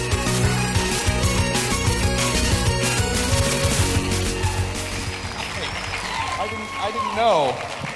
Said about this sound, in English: I wasn't sure I have a feeling that applause is mostly for those little teeny songs to stop finally.